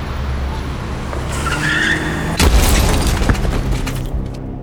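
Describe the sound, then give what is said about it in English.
A 1984 Buick LeSabre LE Custom's engine rumbles as tires screech into a skid by a hospital entrance, followed by a loud crunching crash and a scatter of clattering debris that trails off. “Just in time to see Chester's yellow-stained grin trapped underneath a 1984 Buick LeSabre LE Custom.”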